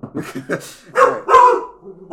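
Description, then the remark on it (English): Dogs let out two loud, sharp barks after someone knocks on wood, following a moment of voices talking, with some faint yipping trailing off afterward. “I just activated my dogs, everyone.”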